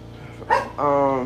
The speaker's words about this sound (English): But yeah, sorry about that, y'all. The dog is in the background barking. I don't know what she wants.